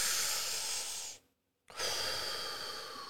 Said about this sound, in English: This is a vacuum happening. I'm pulling air in. I'm expanding my, pulling the sack apart, right?